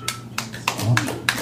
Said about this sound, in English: That was a lonely clap.